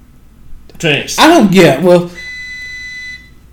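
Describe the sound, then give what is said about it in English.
A coffee maker gives a single steady electronic beep lasting about a second, clear, sounding just after a short burst of someone talking. “For those of you that hear the beep, that's our coffee maker.”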